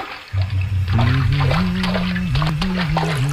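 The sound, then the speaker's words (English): Bathtub bubbling: a steady, low gurgling burble with a droning tone, flecked with small watery splashes, running unbroken for about three seconds with no talking. “Okay, you got the bubble sounds”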